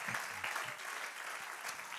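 An audience at a church service claps their hands unto the Lord, a dense, steady wash of many overlapping claps that holds at an even level for the whole stretch, with faint voices mixed underneath.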